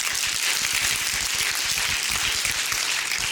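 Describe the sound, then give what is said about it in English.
A church audience claps steadily during a sermon, many hands overlapping into a dense, even wash of applause with rapid irregular slaps throughout, sustained at a fairly loud level with no voices. “That's a good place for you to clap or say amen or do something.”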